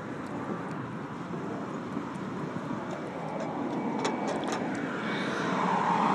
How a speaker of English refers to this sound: here come the real cops. They're passing by the street with the other cop car.